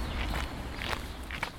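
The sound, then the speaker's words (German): Footsteps walking along a riverbank in the Canton of Bern while searching for a beaver lodge, about four soft crunching steps at an even, unhurried pace over a low steady rumble, with no voices. “Um einen solchen Bau zu entdecken oder sogar einen Biber selbst zu erspähen, marschieren wir weiter dem Fluss entlang.”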